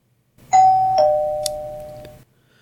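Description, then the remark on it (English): An Amazon Echo smart speaker's welcome-routine chime, set to play when someone enters the room at the New Vision Technology Center: two bright, bell-like notes, the second slightly lower, ringing clearly and fading out together over about two seconds with no one speaking. “I set it up with kind of like a welcome routine. So when somebody would come into the room, this is what would happen.”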